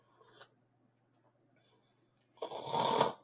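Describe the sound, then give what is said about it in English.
A voice imitates a person's struggling snore during sleep, likened to a pug dog's labored breathing: a short, soft snort, then a long pause before a loud, harsh, rattling inhale that rasps for almost a second. “You sound like, you know how pug dogs struggle to breathe at all times? That's you when you're asleep.”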